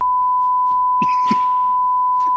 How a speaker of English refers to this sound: Beep beep beep beep.